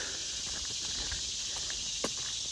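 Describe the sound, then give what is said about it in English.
Cicadas buzz in a steady, high-pitched drone in swampy bottomlands along a trail, while soft footsteps patter underneath and a single sharp tap sounds near the end. “You can hear a lot more of those cicadas down in here.”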